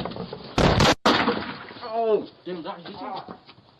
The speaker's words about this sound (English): Here's this kid shooting himself in the leg. That's him kicking the door in.